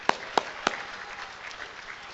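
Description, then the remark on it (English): Three sharp claps ring out in quick succession, then a softer scattering of applause continues faintly from a crowd, with no one speaking. “Yes, clap!”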